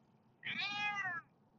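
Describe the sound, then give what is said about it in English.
A single drawn-out cat meow, plaintive and complaining, from cats unhappy as the journey on the road starts moving forward, rising clearly over a low background rumble and lasting under a second. “Cats are not happy after all. They started complaining as soon as I started to move forward.”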